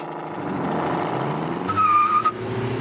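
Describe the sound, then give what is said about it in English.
A car engine, just started with the ignition, runs steadily with a low, continuous rumble, and a brief high-pitched squeal rises near the end before the motor settles again. No one speaks. “Listen to that motor purr.”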